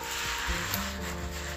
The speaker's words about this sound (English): So it explains what all that scrubby dubby is in the background.